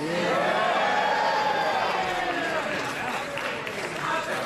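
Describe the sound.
Loud cheering in Parliament after a vote result is announced, ayes 328 to noes 301, a cheer about Boris Johnson: many voices shouting and roaring at once, a dense continuous din with rising and falling yells that holds steady throughout.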